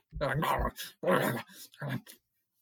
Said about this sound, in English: Oh, no, I thought she was like snatching away the chicken. Yeah, her and our dog are fighting over the chicken.